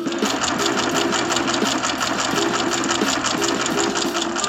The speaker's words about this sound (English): My stat of the week, hot off the printer, involves Kenyon.